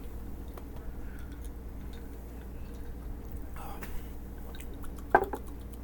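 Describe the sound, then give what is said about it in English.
A single bright clink of cocktail glasses holding a Spider-Man cocktail (gin, vodka, tequila, rum, strawberry liqueur, blue Red Bull, blue curacao) rings out near the end, briefly high and sharp, after several seconds of quiet low hum and faint clatter. “Clink it up.”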